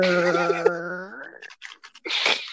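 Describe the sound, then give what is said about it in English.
A voice makes a buzzy, drawn-out fart noise that rises in pitch, then breaks into a few sputtering, breathy bursts, close and fairly loud. “What if it made a fart noise when you open that shit?”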